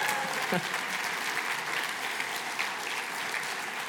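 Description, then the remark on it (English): An audience claps steadily for a few seconds to welcome back college students at a morning gathering, a dense, even patter of many hands with no pauses and no voices standing out. “I want to just give us a sense, or are we going to clap there for a second? Let's clap, yeah.”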